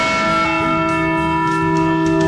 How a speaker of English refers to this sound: The Liberty Bell, ladies and gentlemen. Think about it. Think about it. I don't know why we're thinking about it. It's a bell. It's a rung to symbolize liberty.